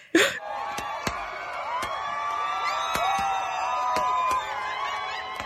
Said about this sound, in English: And once the hearing was announced, the crowd outside the courthouse went absolutely wild.